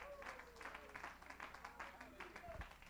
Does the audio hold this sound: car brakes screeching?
no